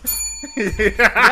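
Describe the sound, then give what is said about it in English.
A bright bell rings once, its clear metallic tone lingering for about half a second before a voice starts talking over the fading ring. “That bell is the what? That's the problematic bell.”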